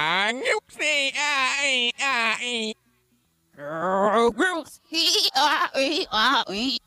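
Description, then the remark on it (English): Goats bleat loudly in a rapid string of wavering, nasal calls, a burst of several bleats, a brief pause, then another overlapping flurry that sounds like more than one animal. “We're listening for the GOAT, followed by the GOATs.”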